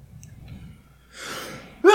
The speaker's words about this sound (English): I'm going to sneeze.